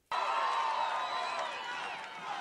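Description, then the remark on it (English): A large rally crowd erupts suddenly into loud, sustained cheering and shouting as a man puts on a hat. The roar holds steady for a couple of seconds and eases only slightly toward the end. “The man can make people cheer because he puts on a hat.”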